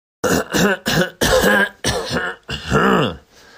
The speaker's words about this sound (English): Let me clear my throat.